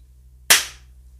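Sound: single hand clap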